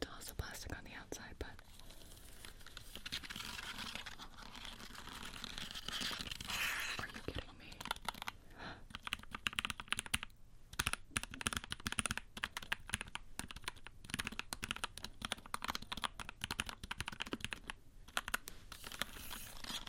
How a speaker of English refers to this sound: This is the Mojo 68 mechanical keyboard, and this is a 65% keyboard, which I thought it was so cool, and it fits my aesthetic so well.